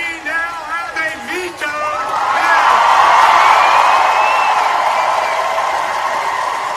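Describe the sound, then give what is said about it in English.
A large crowd on the capitol steps in Raleigh, North Carolina, roars and cheers as the governor signs his veto of abortion legislation, with scattered shouts and whoops rising over a sustained, loud wash of voices that swells after the first couple of seconds and holds steady. “Obviously, a huge crowd in Raleigh, North Carolina, as the governor signed that.”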